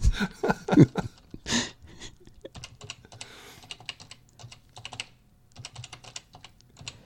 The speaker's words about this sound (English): Are you typing to Boing Boing?